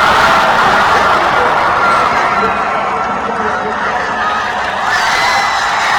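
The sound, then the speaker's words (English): A huge crowd of around 20,000 people at Lucas Oil Stadium screams and cheers for the Pride of Broken Arrow on Saturday night in a steady, roaring wall of noise that holds loud for the whole stretch, with the Bands of America announcer's voice over a loudspeaker faintly buried underneath. “the actual voice of Bands of America, being drowned out by a crowd, I think around 20,000 people, screaming their heads off for the Pride of Broken Arrow at Lucas Oil Stadium on Saturday night.”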